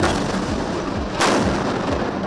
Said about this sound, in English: This while both sides appear to have been pounding the area with airstrikes like this.